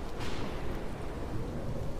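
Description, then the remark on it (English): A steady wash of heavy rain from a ferocious storm at a hotel, with a deep, continuous low rumble of thunder underneath, filling the whole stretch at a constant, moderate loudness with no voices. “I tuned in to the local wolf howls, and they have issued a severe lightning warning.”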